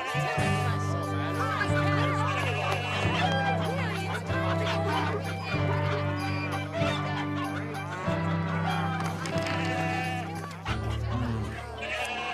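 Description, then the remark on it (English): Hens cluck and squawk amid occasional bleating and a busy murmur of people in a temple where animals are sold, all layered over a steady low drone, creating a crowded, continuous din throughout. “look, it's like an animal farm in here. This bird is 12 drachmas.”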